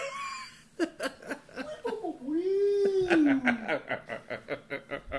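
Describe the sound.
A voice imitates a Chewbacca-like Wookiee growling cat purr, a drawn-out yowl that bends up and down in pitch, followed by rhythmic bursts of laughter.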